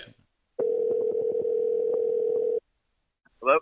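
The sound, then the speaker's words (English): A steady telephone dial tone hums for about two seconds at the start of a phone call placed from Baltimore, preceded by a short burst of noise and followed by a brief voice fragment at the end. “Here's a raw recording of the start of my phone conversation”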